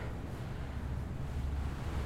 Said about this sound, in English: So, you can hear the sea there. So open ocean to one side.